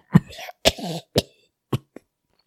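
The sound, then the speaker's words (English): Five harsh, hacking coughs in quick succession, loud, the first two followed by raspy wheezing breaths, the last ones shorter and weaker as the fit tapers off. “The coughs grew in intensity.”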